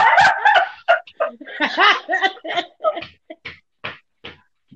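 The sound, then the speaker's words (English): A person imitates a small dog's yappy barking, a quick burst of high, nasal yips followed by a string of shorter separate barks that taper off, fairly loud. “Need a little more bass in that bark right there.”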